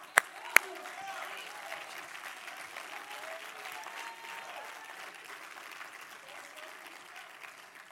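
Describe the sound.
An audience applauds steadily, a dense wash of many hands clapping, with a couple of sharp louder claps at the start and faint voices mixed underneath.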